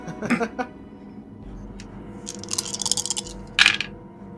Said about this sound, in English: Okay. So, after rolling all these crazy dice here